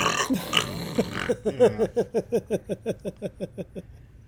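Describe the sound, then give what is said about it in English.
A voice imitates the engine of an ekranoplan, a ground effect vehicle, starting up: a rough, gravelly rumble that breaks into about fifteen steady, throaty chugs, each fading in loudness as the rhythm continues. “Is when you turn the plane on, you hear this loud just...”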